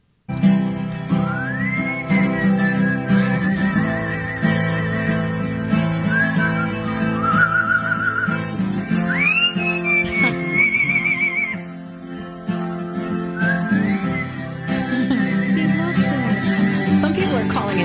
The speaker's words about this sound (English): Here is the bird singing along to his owner.